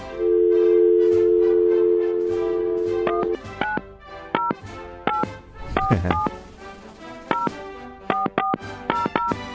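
telephone dialing tones

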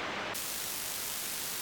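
radio static

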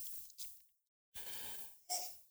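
sneeze

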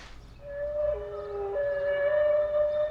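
whale song

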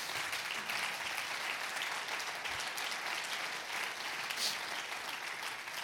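audience clapping hands

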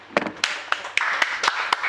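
audience clapping

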